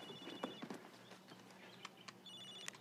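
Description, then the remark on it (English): A cell phone rings with a high, electronic trill in two bursts, one at the start and one at the end, mixed with scattered clacking taps, fairly quiet overall and without any talking. “But he kept a cell phone ringing around.”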